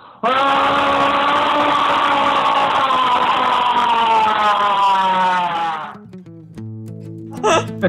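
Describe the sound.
A person imitates a wolf howl: one long, loud, sustained wail lasting about six seconds, its pitch drifting slowly downward before it cuts off, followed by a few faint brief sounds.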